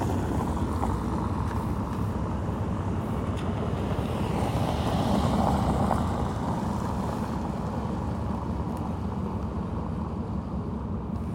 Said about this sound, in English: And, you know, photographing stone's not very interesting, but all these cars coming by here, hang on. It suddenly became a little highway here.